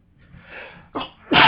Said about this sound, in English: Oh, he sneezed in it? That's weird. And he let out a big sneeze.